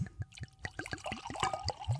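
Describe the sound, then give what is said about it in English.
White Orvieto wine glugs and splashes into a glass in Italy in a quick series of liquid bursts, with faint ringing tones as the glass fills, clear with no talking. “And this is a wonderful Orvieto that we're pouring here”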